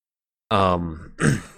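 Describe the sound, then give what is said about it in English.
A person clears their throat in two quick bursts, a voiced, low rumbling push followed by a rougher, breathier rasp, with silence before it and no talking. “oh, I had to clear my throat.”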